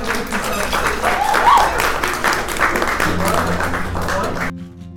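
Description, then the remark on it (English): A crowd of students at a Student Summit claps and cheers for themselves steadily for several seconds, dense and fairly loud, with some voices mixed in, before the applause cuts off abruptly near the end. “Yes, give yourself a round of applause.”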